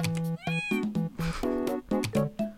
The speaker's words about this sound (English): There's a bunch of cats on the scratching post right now. You have cats like stacked.